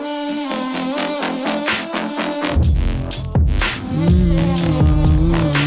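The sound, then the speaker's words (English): A distorted, buzzing hum drones over a steady beat of punchy drum hits, with heavy bass thumps kicking in about halfway through. Loud and continuous, with no one talking. “And it's got the distorted humming over it, like you can hear right now.”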